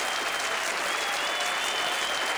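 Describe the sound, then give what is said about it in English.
Sustained applause from a crowd, a dense steady wash of many hands clapping that stays loud and even from start to finish with no voices breaking through. “It's a long clap.”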